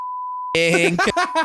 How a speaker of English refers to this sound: We'll probably have to beep all that